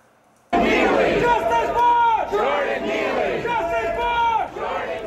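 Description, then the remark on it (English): A large crowd of protesters in New York City chants in loud unison, demanding justice for 30-year-old Jordan Neely, a homeless man who died after being put in a chokehold on the subway. Voices rise and fall in a repeated rhythmic call, dense and sustained with no pauses across the few seconds. “Demands there, as you hear, for justice for 30-year-old Jordan Neely.”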